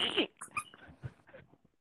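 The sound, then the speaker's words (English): A squeaky dog toy lets out one short, loud, high-pitched squeal at the start, followed by quieter muffled voices and rustling. “Can you hear the dog toy? Yeah, that's going.”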